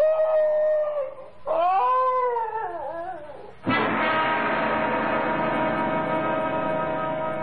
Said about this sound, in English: Now, what's all that? Why, it's the Higley dog. Patsy. Oh, here, Patsy. What's the trouble, doggy?